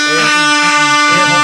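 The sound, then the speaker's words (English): An air horn sound effect: a loud, blaring blast that lasts about a second and a half, its brassy, buzzing tone holding steady with slight pulsing in its texture. “Air horn to you.”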